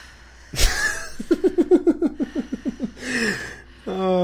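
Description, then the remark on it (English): A voice mimics heavy breathing, as of someone breathing over a sleeping person: a sharp gasp, then a quick rhythmic run of about a dozen voiced, panting huffs, ending in drawn-out groaning breaths, fairly loud. “Because you could interpret that as either the person that's sleeping or you breathing over the person that's sleeping.”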